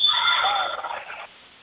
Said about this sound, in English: Offensive foul whistled on the far side.